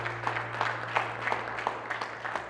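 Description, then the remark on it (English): A church audience applauding steadily for the people making decisions, a dense wash of many hands clapping with a few sharper claps standing out, over a low constant hum. No one speaks. “Come on, let's give a round of applause to the people that are making decisions.”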